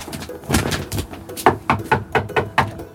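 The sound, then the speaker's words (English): Someone knocks on a front door that has no doorbell in a quick, steady series of about half a dozen raps, fairly loud, after a few softer thuds at the start. “Doorbell? No? No doorbell. Knocking? Door knocking.”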